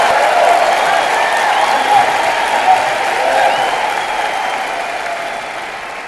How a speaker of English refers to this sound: let's give him the normal applause